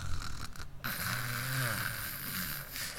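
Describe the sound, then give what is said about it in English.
A man snores loudly with his mouth wide open during a nap, a harsh, rasping drone with a low rumbling tone that swells mid-breath, with no talking over it. “So last night, after church and after he had taken a nap, oh my gosh, he was sawing some wood. His mouth was wide open.”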